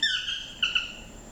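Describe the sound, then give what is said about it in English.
A harsh, nasal tropical bird squawk recorded in Costa Rica rings out, followed by two shorter squawks a moment later, loud with a faint hiss of background ambience. “The music for this show are sounds from Costa Rica from my recent trip, so it's like thunder and birds and toucans and howler monkeys.”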